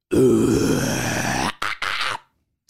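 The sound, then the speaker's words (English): A loud, guttural death metal style growling scream lasting about a second and a half, rough and low-pitched, followed by two shorter harsh bursts before cutting off into silence. “So this is my sort of death metal like scream.”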